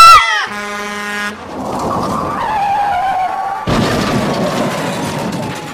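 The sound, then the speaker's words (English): A truck's horn blares, then its tires screech in a long, wavering squeal that ends in a sudden crash, with a rattling, noisy aftermath; the accident is caused by a driver reading a book. “Another tragic accident caused by drivers reading books.”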